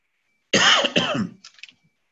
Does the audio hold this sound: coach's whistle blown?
no